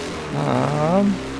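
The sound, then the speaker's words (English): A kickstarted motorcycle engine roars once as the bike rides out of the Elysium: a buzzy, harmonic drone about a second long that swells, rises and dips in pitch, then cuts off, heard alone with no talking. “All right, okay, so he briefly explains to you how to ride passenger on a motorcycle before kickstarting the bike, and you roar out of the Elysium.”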